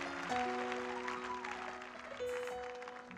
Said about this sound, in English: And now let's round that up with a round of applause. Please put your hands together for her.